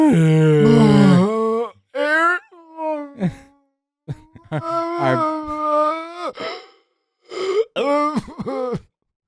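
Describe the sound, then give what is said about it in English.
A voice lets out a series of loud, drawn-out groans and wailing moans with sliding, rising and falling pitch, imitating a dying whale, in several bursts separated by brief pauses. “You sound like a dead, dying whale.”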